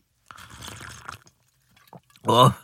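A glass of Klopkin's Extra Klopkin liquor is poured for a L'chaim toast, lasting about a second, moderately loud with a gurgling splash; after a brief pause a short, loud vocal exclamation follows.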